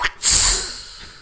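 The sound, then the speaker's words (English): A voice imitates a whip crack: a short breathy lead-in, then a sudden sharp hissing burst that trails off over about a second, with no speech. “That was my whip noise for throwback.”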